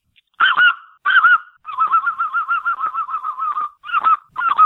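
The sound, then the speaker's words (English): A person imitates a white-fronted goose (speckle belly) using only the mouth, no call: two sharp yelping calls, then a rapid, rolling chatter of laughing notes, followed by a few more yelps, loud with no talking. “Let's do a speckle belly. Speckle belly. Okay, here we go.”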